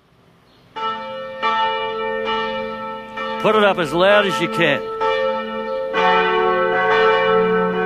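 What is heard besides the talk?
loud ringing bell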